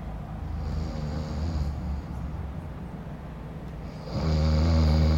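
A man, a band's drummer, snores heavily, long rumbling breaths rattling through the throat, with a louder, harsher snore swelling near the end. No one speaks.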